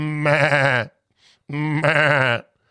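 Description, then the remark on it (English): A sheep bleats twice, loud, each wavering baa lasting under a second, separated by a short pause with no one talking. “spotted by some Bureau of Land Management helicopter pilots counting sheep, literally counting sheep.”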